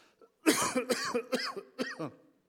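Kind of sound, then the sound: human body sound, cough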